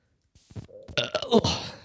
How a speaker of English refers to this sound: But what's more artful than the human burp?